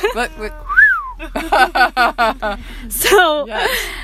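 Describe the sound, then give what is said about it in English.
A quick, clear whistle swoops up and back down near the start, followed by a run of rhythmic, chuckling vocal bursts and some voices. “So we need the whistle.”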